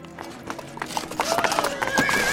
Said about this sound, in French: J'entends encore les fers de leurs sabots énormes battre le pavé.